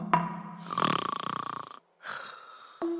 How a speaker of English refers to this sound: As Elephant, Gazelle, and Zebra watched Rhino snoring away, it suddenly dawned on them why he was so hale and hearty.